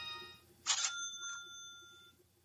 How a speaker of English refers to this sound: I know. I hit two beeps.